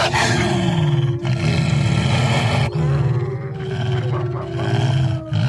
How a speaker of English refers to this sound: That sounds like a wolf. It's a wolf. Yeah, it's a wolf. It's a wolf.